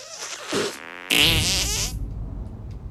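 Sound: fart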